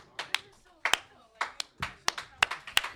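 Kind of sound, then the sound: crowd, audience clapping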